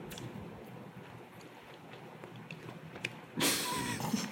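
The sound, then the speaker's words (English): Moist chewing of poppy seed food into a microphone, with small crunchy clicks and a few sharp ticks, then a burst of louder, noisier smacking and crackling toward the end. No one speaks. “I'm chewing into the microphone.”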